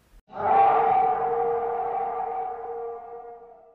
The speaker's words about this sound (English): Then we hear growling of a wolf in the pen with him.